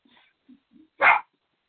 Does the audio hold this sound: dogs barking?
yes